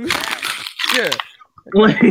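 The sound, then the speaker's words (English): An empty plastic water bottle is crunched in two loud, crackly bursts, followed after a short pause by a voice speaking briefly. “For those who are listening, I just crunched the empty water bottle.”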